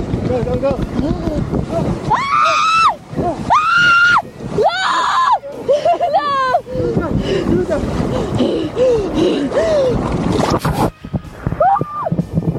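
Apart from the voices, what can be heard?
woman screaming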